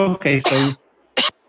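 A voiced cough comes in three quick rough bursts, then after a brief pause one more short cough. The sounds are loud and throaty, with no other talking around them.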